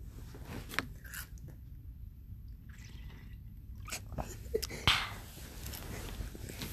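ASMR drinking of water: soft wet sips, swallows and mouth clicks come in scattered bursts, with one sharper gulp near the end. Otherwise quiet, with no talking.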